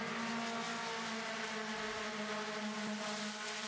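Six Idemitsu Mazda MX-5 race cars roar across the line finishing the second lap, the Hickson Motorsport car pushing the leader, in a loud, continuous engine drone, their buzzing pitch holding steady and rising slightly, with no voices over the noise.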